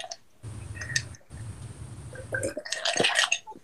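Someone fetches and drinks a glass of water: muffled low thumps and handling noise, then bright clinks, drips and wet slurping sounds, with no talking.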